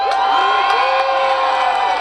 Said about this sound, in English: Punxsutawney Phil, the seer of seers, prognosticator of all prognosticators, was awakened from his burrow to the cheers of his thousands of faithful followers.